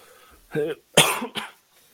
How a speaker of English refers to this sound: I gotta get over this cough.